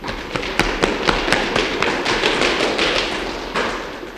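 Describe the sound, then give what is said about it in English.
An audience at a church service stomps their feet on a floor, producing a rapid, irregular barrage of heavy thuds and taps over a rumbling wash of noise for about four seconds, with no talking. “Can I have a stomp for that?”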